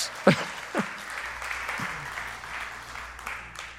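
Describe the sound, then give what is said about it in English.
A few scattered, hesitant claps from a church audience ring out in the first two seconds, then trail off into a soft, steady murmur of background noise without any further clapping. “Someone wanted to clap and then got very hesitant. It's okay to clap that if you want.”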